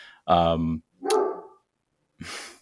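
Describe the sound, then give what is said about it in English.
A dog barks three times in quick, uneven succession: a full-throated woof, a sharper second bark, then a short breathy huff after a brief pause, all clear. “Got my dog barking in the background, of course.”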